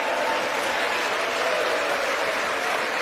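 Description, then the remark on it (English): Steady, dense applause from a large crowd in a legislative chamber during a speech on the border, with scattered cheers mixed in. The clapping holds at an even, fairly loud level for the full three seconds, with no speech. “So you would think there's bipartisan cheering for that, because you could take that either way.”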